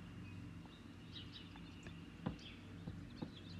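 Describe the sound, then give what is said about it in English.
Faint, scattered bird chirps and tweets drift in over a steady low outdoor rumble, with a few soft knocks along the way. “Yes, when you wake up and walk outside and the birds are going to town with the vocals, it's the rising song, family.”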